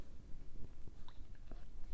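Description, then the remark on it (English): Soft mouth sounds of someone sipping water, with small wet clicks and gulps over about two seconds and no talking. “I had to get a sip of water there.”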